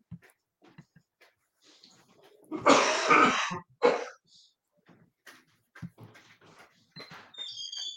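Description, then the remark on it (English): A burst of harsh coughing, followed by a shorter cough and some throat clearing, with quiet rustling and a faint high tone near the end. “I'm sorry, I got to take a quick cough drop break.”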